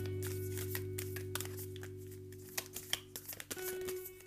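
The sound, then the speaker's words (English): Oracle card shuffling, a rapid run of soft papery flicks and riffles that grows sharper toward the end, over a steady low background hum. “Can you guys hear that? Like the shuffling noise?”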